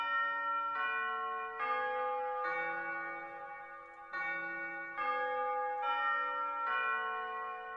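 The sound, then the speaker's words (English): A bell in a video game, rung by jumping up to it, chimes the familiar Westminster Quarters tune, about ten clear ringing notes in a steady stately sequence, each tone sustaining and overlapping the next, with no voices. “Once you ring the bell, it sounds the Westminster Quarters song.”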